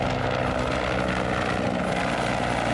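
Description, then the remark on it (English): A helicopter roars steadily above a house, its rotor chop and engine drone loud and continuous throughout, with no voices. “As, like, helicopter is going, like, above the house.”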